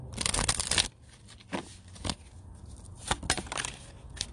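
A deck of oracle cards is shuffled in a quick rustling burst, followed by a few scattered card snaps and taps, with no voices.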